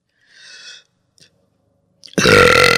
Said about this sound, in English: My God, that was a monster burp. That was from his ass. Yeah, that was the worms talking.